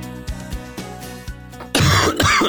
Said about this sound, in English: Getting all the coughs out. Get them all out. Yep. That was actually recorded. I recorded that one.